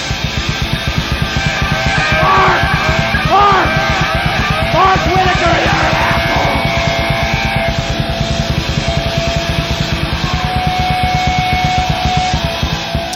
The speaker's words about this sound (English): I mean, the audio right there, it's so distorted and stuff, but it's audible. You know what he's saying.